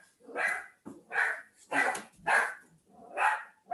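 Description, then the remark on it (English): A Havanese puppy barks excitedly at a dog walking by, in a quick series of six sharp, high-pitched yaps, loud, with short pauses between each bark. “That's Sky, our Havanese puppy.”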